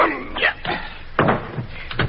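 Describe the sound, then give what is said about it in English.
A door slams shut with a heavy thud, framed by a couple of lighter knocks and rattles just before and after, with no one speaking. “I'll open the door for you. Just throw him in.”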